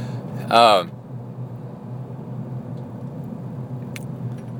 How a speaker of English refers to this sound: Oh, we got a traffic jam. That's great news.